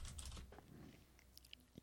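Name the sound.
typing on a keyboard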